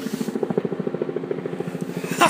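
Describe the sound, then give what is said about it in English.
A helicopter passing close overhead, its rotor making a loud, steady, rapid thumping throb that fills the whole clip, with a brief brighter rush of sound near the end. “This chopper, I get passed right overhead.”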